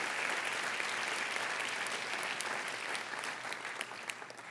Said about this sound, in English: ¿Por qué no le das un aplauso al Señor? Why don't you give the Lord a strong round of applause?